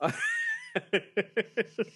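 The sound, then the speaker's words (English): A cat named Yum gives a drawn-out, wavering meow, then a quick run of six short, evenly spaced chirping calls, clear with no talking. “Say Nine hi to yum. The kitty.”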